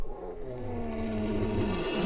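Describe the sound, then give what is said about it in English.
A person voices a low, rough, sustained growl through an elk bugle call, imitating a bull elk in answer to a bull's bugle. It holds steady for about two seconds with a gravelly, engine-like rumble and no other talking. “And usually when I do, I just growl at him.”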